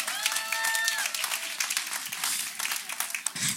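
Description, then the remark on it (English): A crowd applauds steadily, a dense wash of many hands clapping at once, fairly loud and continuous throughout, with a few brief whistles or cheers rising over it early on. “Please clap so I can get some water.”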